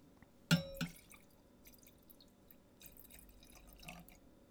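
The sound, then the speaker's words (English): Wine is poured through an aerator into a couple of glasses: a bright glassy clink up front, then soft, quiet gurgling and splashing of liquid, with no one speaking. “So I'm going to pour us a couple of glasses now.”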